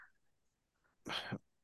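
A single sharp, close cough bursts out after a moment of near silence, loud and brief, with no talking around it.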